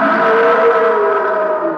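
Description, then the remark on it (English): A loud, sustained abominable snowman roar from the Matterhorn ride at Disneyland: a steady, harmonic, howling tone that holds for nearly two seconds and sags slightly in pitch toward the end, with no talking. It is a Disney Imagineer's first contest take, used in the ride. “And it's such a great sounding roar.”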